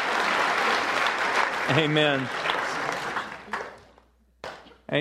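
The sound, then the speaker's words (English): A crowd applauds the men and women who lead, pray for and serve them, in a steady, dense wash of clapping that fades over a few seconds while a voice calls out over it, followed by a brief lull and a couple of short bursts. “Let's give these men and women a hand for leading us, praying for us, serving us.”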